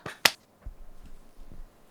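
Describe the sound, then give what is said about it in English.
One sharp hand clap, made to sync audio recordings, cracks out near the start, loud and instantly gone, leaving only faint low rumbling background noise for the rest of the moment. “on clap sync. 3, 2, 1.”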